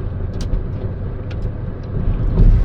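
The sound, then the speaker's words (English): Steady low road rumble from inside a moving car following a garbage truck that is spilling trash, rock particles and dust, with a few brief sharp ticks scattered over the drone and the noise swelling slightly near the end. “I'm driving into all this garbage truck's garbage.”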